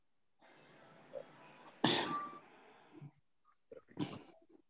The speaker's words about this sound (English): And so, yeah, when I hear the goat, it reminds me of the lamb's breath.